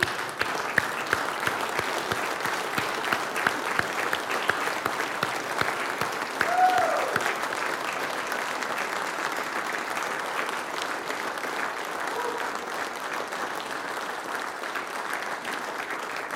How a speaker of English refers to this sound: I'd like to ask all of our men. You ladies, stay seated. Men, let's stand and give them one terrific round of applause. Can we do that together? Let's do it.